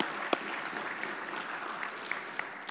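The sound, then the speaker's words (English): A church audience applauds military veterans who have raised their hands, a steady, dense wash of many hands clapping at moderate volume, with a few sharper individual claps standing out and no one speaking. “If you have served, would you just slip your hand up so we can applaud you?”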